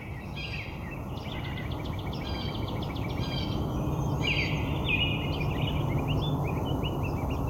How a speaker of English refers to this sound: There's a robin here. You can already tell from this how the soundscape looks, how rich it is.